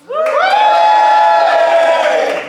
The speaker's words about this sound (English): And that did sound pretty good, but let's hear what the defence's side has to offer. The jury in support of the defence, whooping and cheering now.